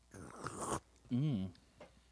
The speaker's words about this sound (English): I'm going to take my first little sip here.